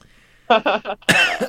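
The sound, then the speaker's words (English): A quick series of three muffled coughs followed by a harsher, raspy burst of throat clearing, with no talking. “Sorry, I had to cough, and then my throat just filled with I don't know what that was.”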